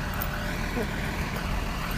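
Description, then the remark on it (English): A school bus pulls up to pick up children, its heavy diesel engine rumbling low and steady throughout, with a faint hiss riding over the drone. “oh, here's your bus.”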